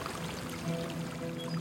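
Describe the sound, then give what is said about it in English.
A steady stream of Turkish coffee pours into a china cup at a kitchen table in a home in the hills of Glendale, California, in April 2001. A continuous splashing trickle with a faint rising ring as it fills, no voices present. “sits at his kitchen table and pours a long stream of Turkish coffee into a china cup.”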